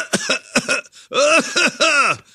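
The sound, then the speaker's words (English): A loud, exaggerated cough delivered on purpose in the style of a Letterman cough: a few short voiced bursts followed by three longer, throaty hacks, with no talking around it. “Yeah, it sounded like a deliberate cough.”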